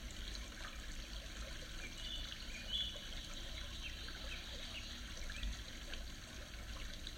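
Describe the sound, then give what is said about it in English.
Water flows and trickles steadily in a nearby stream, a continuous bubbling wash of sound with no voices, holding an even level throughout. “Right now you are next to a stream.”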